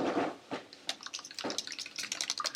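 Straws stir eggnog in cups, making soft liquid sloshing and bubbly gurgles with a few sharper splashy bursts, fairly quiet and with no talking.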